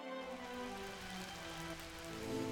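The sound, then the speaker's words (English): A light drizzle patters steadily and softly on a surface, a continuous gentle hiss of fine drops with a faint sustained tone underneath; no one speaks. “my miserable drizzle is your soft, cold respite, and now I can't help but think of you when it rains.”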